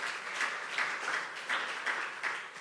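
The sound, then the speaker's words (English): A crowd applauds steadily for a man who has just spoken, many hands clapping in a dense, even patter with slight swells in loudness, no voices heard over it. “Can you clap for him, please?”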